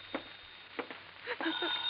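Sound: telephone ringing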